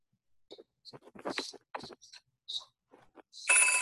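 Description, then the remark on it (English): A loud, bright telephone ring from an incoming caller bursts in at the very end, following a series of short, choppy, chattering sounds that could be muffled or garbled voices. “Oh, look, another caller. Oh, let me answer that.”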